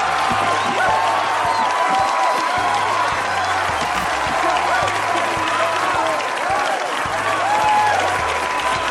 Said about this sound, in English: Yeah, that's some good applause.